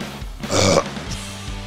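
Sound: burp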